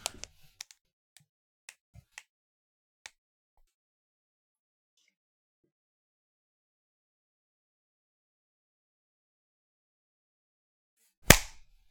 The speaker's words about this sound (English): My clap is very, very small, but I'll be able to find that. Hey, I can see it.